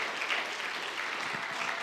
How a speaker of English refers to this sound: Let's clap our hands unto the Lord today.